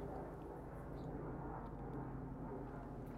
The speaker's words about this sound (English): I'll take another drink while this plane goes over.